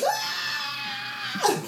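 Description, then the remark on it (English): A voice imitates a shrill, high-pitched scream, holding one long piercing note that breaks off sharply near the end, loud and continuous, with no other sounds. It imitates a man rolling on the ground after running head first into the corner of a counter. “He drops like a sack of potatoes and is rolling on the ground screaming like an 11-year-old girl. He's going, that high pitch, I swear to Christ.”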